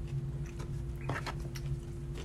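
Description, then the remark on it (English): Crisp crunching as someone bites into and chews a breaded fried chicken tender, several irregular crunches over a steady low background hum, with no talking. “That's good, man, with the crunchy too. The crunchy is so good, the breading.”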